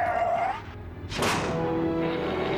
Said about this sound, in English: Once again, Grievous smashes his hand down and ends communications early with Count Dooku.